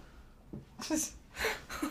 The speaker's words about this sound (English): Just constant dog sneezes.